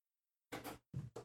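door being closed

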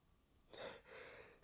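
sneeze

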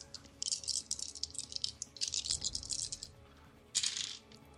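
dice being rolled

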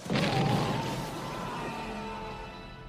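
explosion

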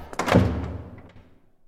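door slamming shut

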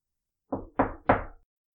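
knocking on a door

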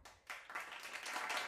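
hand clapping

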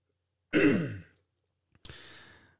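throat clearing

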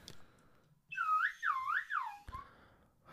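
slide whistle played

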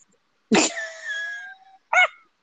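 dog making noise

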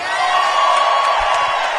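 crowd cheering and whooping

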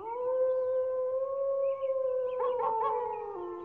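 wolves howling

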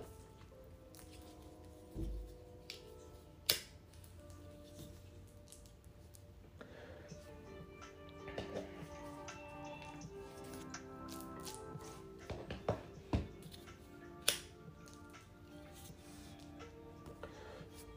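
rolling paper crinkling

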